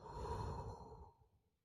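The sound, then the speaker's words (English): A single deep, audible breath, airy, rushing steadily for about a second before tapering off into quiet like a long sigh. “It's just breathing, focusing on your breath, taking 5 minutes a day, sitting somewhere, cutting off all the noise, and just literally breathing in and then breathing out.”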